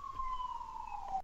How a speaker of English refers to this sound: Can you tell those sirens to cut it out?